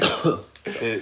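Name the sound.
person coughing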